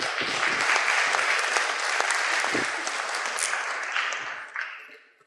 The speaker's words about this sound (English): All right, come on up. Folks, give them a round of applause as I grab the microphone here.